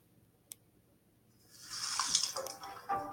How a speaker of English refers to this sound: You know, we waste 4 gallon every time we brush while the water's running. 4 gallon. Clean, drinkable water. Down the drain.